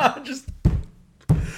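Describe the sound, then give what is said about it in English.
Two dull, heavy thuds of a head knocking against a tabletop, spaced about half a second apart, following a brief groaning vocal sound. “Well, as I bang my head on the table.”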